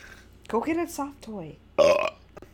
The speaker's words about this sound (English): Wow, that burp registered so loud on my I love it. You have really good burps.